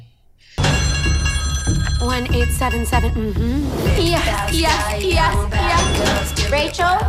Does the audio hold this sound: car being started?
no